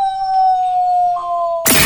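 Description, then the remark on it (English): A person lets out a long wolf-like howl, one steady high tone that droops slightly in pitch, cut off by a sudden loud burst of noise at the end. “let them hear you howl.”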